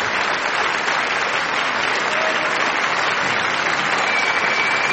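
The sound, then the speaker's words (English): Steady applause from a crowd, dense continuous clapping at an even loudness for several seconds, with no voices standing out. “Oh, wait, what's my clap?”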